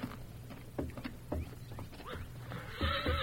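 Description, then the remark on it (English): A stallion whinnies in bursts while hooves clop in an uneven rhythm, with some shuffling and a louder, tonal neigh at the end. “Hey, that stallion's still acting up in the lean-to. Bring him out here.”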